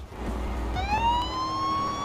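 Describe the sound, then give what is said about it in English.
A police siren from a North Carolina State Highway Patrol car in a racing video game starts up partway through, a loud wail sweeping steadily upward in pitch over a low, continuous engine rumble. “I have a North Carolina State Highway Patrol car as my race car in Forza”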